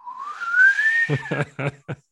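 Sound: person imitating a whistle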